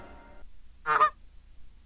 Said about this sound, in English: Yeah, look how you added a honk in between every single one.